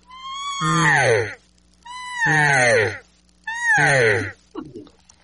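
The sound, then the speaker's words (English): Three loud, raspy elk cow estrus mews imitated by a person on a cow call, putting their voice into it, each about a second long, opening on a high note and sliding downward, followed by a brief faint rustle. “it's a demanding mew for somebody to do something”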